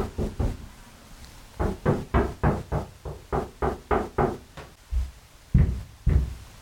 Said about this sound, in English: I'm locked in my bedroom right now. And my 4-year-old was knock, knock, knock. And the knock started real innocent. Oh, I heard the knocks.